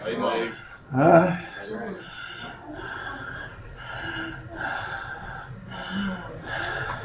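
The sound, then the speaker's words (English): A single sudden, loud sneeze bursts out about a second in, with a sharp gasping intake, followed by ongoing murmur and voices talking in the background. “Bless you.”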